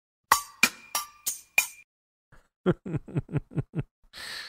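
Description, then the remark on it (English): Keys jingling: five sharp, bright clinks with a faint ringing tone, then a quick burst of softer rattling taps and a short hissy shake at the end, with no voices. “It sounded like some keys jingling.”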